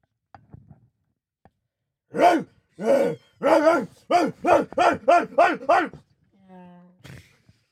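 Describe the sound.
A person imitates a dog with a quick series of about eight loud, rhythmic barks that speed up toward the end, followed by a brief hum and a short vocal sound.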